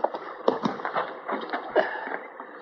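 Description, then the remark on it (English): Horses' hooves clip-clop in an uneven, unhurried rhythm as the horses are brought to a creek to be watered, the muffled knocks mixed with faint rustling, with no one speaking. “Let's water the horses here, Chester.”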